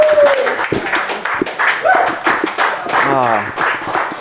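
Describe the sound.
A crowd gives another round of applause with steady, dense clapping, mixed with cheers and voices calling out over the top, sustained for a few seconds at a fairly loud level.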